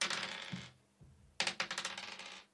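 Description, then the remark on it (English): Dice, rolled to decide high or low, rattle and clatter across a hard surface in two bursts, a short roll followed by a longer tumbling series of quick clicks that gradually settles. Fairly crisp, with no voices. “Roll a dice, highs or lows.”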